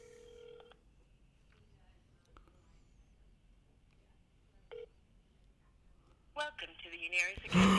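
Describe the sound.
A telephone line rings out on an outgoing call: a short electronic tone, a long quiet pause, another brief tone, then a voice picks up on the line near the end.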